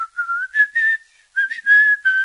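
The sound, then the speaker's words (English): A man whistles a cheerful tune inside a keke, two short melodic phrases of clear, bright notes separated by a brief pause, moderately loud with no talking. “He's always whistling inside the keke.”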